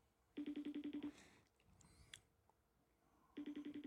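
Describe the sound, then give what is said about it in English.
A FaceTime call rings out in a rapid burst of bright, evenly spaced electronic tones, pauses, then starts another burst, repeating unanswered with no one speaking. “Why doesn't anyone want to answer your FaceTime calls?”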